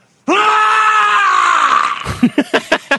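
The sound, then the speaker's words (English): A video game character's loud, sustained death scream holds for nearly two seconds, then breaks into a rapid series of choppy, gurgling bursts like a throaty gargle, heard alone. “Isn't that a good scream? It's like a gargle.”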